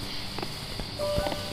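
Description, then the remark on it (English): A few slow footsteps land on cobblestones with a soft scraping, sliding drag between them, heard against a steady low background hum with no voices. “The sounds of footsteps, accented by slithering along cobblestones.”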